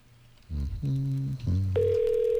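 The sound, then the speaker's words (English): A phone call being placed to someone's mom: a few short buzzy electronic tones give way to a steady, sustained ringing tone that holds to the end, with no voices. “All right, call your mom.”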